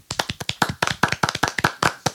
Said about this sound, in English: Definitely want to applaud that.